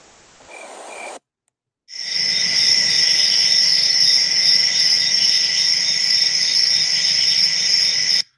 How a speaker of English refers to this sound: That's what you heard. Crickets! Crickets!